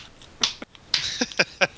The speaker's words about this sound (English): Yeah. Slow clap.